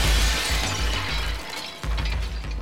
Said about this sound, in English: all of a sudden, Judy heard the rear windshield shatter